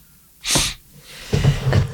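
A single sharp sneeze bursts out suddenly, followed by a moment of quiet and then some low, murmured vocal sounds.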